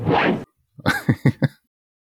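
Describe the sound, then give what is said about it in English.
A short, loud whoosh of rushing air sweeps past. A moment later come three or four quick, clipped vocal-sounding bursts, then silence. “Got a good whoosh in there.”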